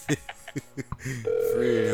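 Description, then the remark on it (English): A quick series of short phone keypad beeps as a number is dialed on a phone to call a DJ for an interview, followed by a steady, continuous ringing tone on the line, clear. “We're going to do it from your phone, not my phone.”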